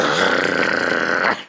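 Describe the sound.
A person imitates the vicious growl of an attack dog: one loud, rough, sustained snarl lasting just over a second, then cutting off abruptly.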